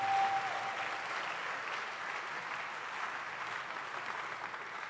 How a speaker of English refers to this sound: Let's clap our hands once again.